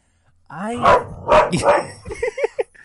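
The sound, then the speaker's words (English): A dog in a bedroom lets out a whiny, rising yelp, then a few loud barks, trailing off into a quick string of shorter yips. “Yay, this is why I don't like having my dog in my room.”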